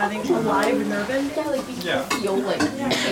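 A busy, steamy kitchen where students are cooking: food sizzles steadily in a pan while utensils scrape and dishes clatter, with indistinct voices murmuring in the background throughout.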